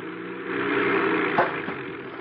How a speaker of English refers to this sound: I bring the plane down and land it on the lake.